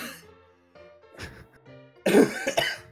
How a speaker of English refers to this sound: Can't stop fucking coughing.